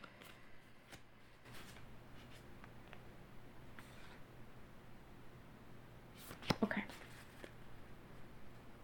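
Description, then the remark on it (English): Quiet rustling and light taps of oracle cards being handled, then a brief, sharper riffle of the deck being shuffled near the end, over a low steady room hum. “I just feel like I should do one more shuffle.”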